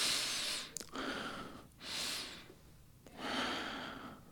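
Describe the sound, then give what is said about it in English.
Three slow, deep breaths are drawn in and let out as a breathing exercise, fairly loud, each a broad airy rush separated by short pauses with no talking. “there's some things you can do, you know, breathing exercise, you know, tell individuals all the time, take 3 deep breaths in.”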